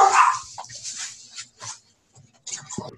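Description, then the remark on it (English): A puppy and a dog bark excitedly at a FedEx delivery person in several sharp bursts, loudest at the start, then scattered yaps and a whimper with brief pauses between. “I have a FedEx guy here, and I have a puppy going crazy right now. And a dog going crazy right now.”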